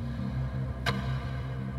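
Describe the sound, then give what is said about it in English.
A clock ticks twice, crisp, about a second apart, over a steady low humming drone that fills the background. “But while we enjoy the blue skies and the warm kiss of sun on these cool days, a clock is ticking.”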